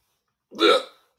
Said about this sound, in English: Oh, God. We got the hiccups. I'm fine.